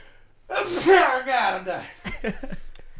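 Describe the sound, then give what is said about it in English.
A person sneezes: a drawn-out, wavering inhale building into a sharp burst, followed by a few quick, breathy follow-up bursts. “you've just been I don't know how many sneezes that was.”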